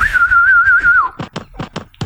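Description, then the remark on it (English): A pet bird gives a steady, slightly wavering high whistle for about a second, followed by five sharp, uneven knocks or taps. “If you can stay, the birds can stay too.”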